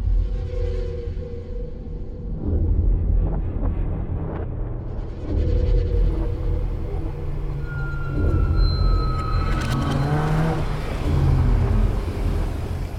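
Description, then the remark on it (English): A car is driven toward a cabin, with a steady low engine rumble and road noise, fairly loud, with rising whines and rattles as it shifts and accelerates over about thirteen seconds. “I wouldn't make it to the cabin in time on foot, so taking the car was the best option.”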